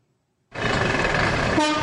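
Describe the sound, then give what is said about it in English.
After a brief silence, loud, dense traffic noise at a bus station in Nairobi, Kenya bursts in, with blaring horns honking over the rumble of bus engines and crowd bustle, continuous. “At a bus station in Nairobi, buses were not only loaded with humans and cargo, but with cash.”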